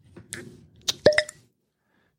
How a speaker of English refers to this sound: But I'm going to pop this cork.